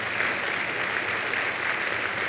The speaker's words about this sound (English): Yeah, you can clap for that. That's worth clapping for.